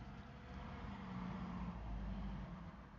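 A car passing by, its low engine and tire rumble swelling slightly in the middle before easing off, fairly faint, with no talking.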